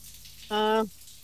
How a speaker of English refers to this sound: Are you in the shower right now? You know what? I am, actually. Yeah, I am. I am.